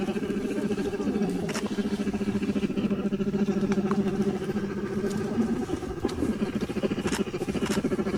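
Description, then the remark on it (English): Bears at the Killam Bear Center purr while eating a huge pile of apples: a steady, low, rapidly pulsing rumble, almost like an idling motor, runs throughout, broken by a few sharp crunching clicks. No one speaks. “Bears. Purring, essentially. Because they're enjoying a huge pile of apples.”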